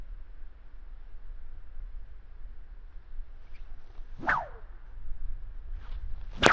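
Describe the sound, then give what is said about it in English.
A whip, swung by hand with a quick rotation and change of direction, swishes through the air and then snaps with a sharp, loud crack near the end, over a low steady background hum with no talking. “You don't really have to have a lot of force with it, but just that quick rotation and change of direction of the whip is where it draws a lot of energy.”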